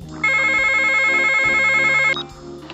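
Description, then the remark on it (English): A telephone rings loudly, one sustained warbling electronic trill lasting about two seconds before cutting off, with a low rhythmic music bed underneath and no one speaking. “get the phone.”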